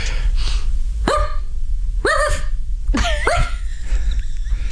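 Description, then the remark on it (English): A person mimics a small dog's yappy barking: four sharp, high-pitched yaps, the last two in quick succession, with a low steady hum underneath. “I'm just going to do it and then you'll be able to tell me what the dog looks like.”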